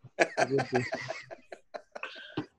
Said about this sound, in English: thanks for coughing right over me.